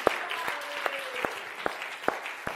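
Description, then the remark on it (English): An audience claps in a steady rhythm, with loud synchronized claps landing roughly every 0.4 seconds over a wash of scattered handclaps and a faint sustained tone beneath. “We can clap on that.”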